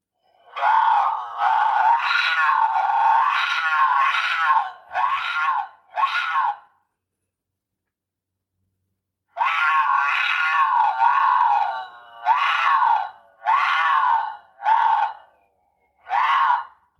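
A mountain lion in heat mating call played from a game call used for coyote hunting: loud, wavering yowls and screams in two long bursts separated by a several-second silence, each burst ending in shorter cries, with no talking.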